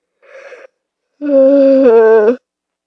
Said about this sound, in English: Yawn.